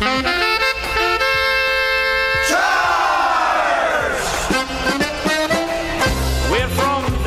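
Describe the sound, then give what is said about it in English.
A rousing Pittsburgh Steelers football fight song with a loud group of voices singing and shouting together over brassy band music, energetic, with a sweeping swell partway through. “like a fight song kind of deal”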